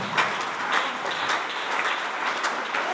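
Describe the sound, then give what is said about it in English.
An audience in a church claps steadily, a dense wash of many hands with faint rhythmic accents, sustained and fairly loud throughout with no voices standing out. “These people, they are joining the clapping.”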